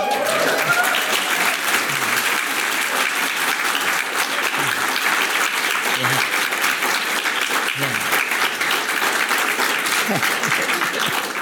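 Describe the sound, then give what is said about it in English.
Sustained audience applause during a speech by the President of Ireland, a dense, even wash of many hands clapping at steady loudness for the whole stretch, with faint crowd murmur mixed underneath. “And may I say, and no taking from your applause at all, I am conscious of John Boorman's interview in The Garden in the last few days that say if it isn't celluloid, it isn't film.”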